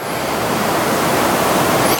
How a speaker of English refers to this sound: And in that moment, the water comes out of the rock because Moses strikes it because God asked him to.